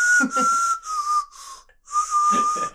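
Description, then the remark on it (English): A breathy, hissy whistle made through the teeth holds a steady pitch in several short phrases with brief gaps, whistling a song tune, with no talking. “That was the teeth whistling, so that's even harder.”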